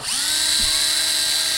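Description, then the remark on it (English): A high-pitched drill whines steadily and loudly throughout, its tone settling after a brief rise at the start, with no voices present. “I know, but she's making it sound that the drilling sound was actually gunfire.”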